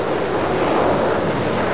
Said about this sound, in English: Each spacecraft carries a copy of the Golden Record, gold-plated copper disc inscribed with sounds and images meant to communicate what life is like on Earth. There are greetings from around the world. The sound of volcanoes. The crash of waves.